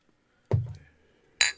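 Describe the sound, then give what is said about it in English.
Glasses of American lager clink together in a toast: a dull knock followed about a second later by a brighter, ringing chink, both fairly loud, with no talking. “Cheers.”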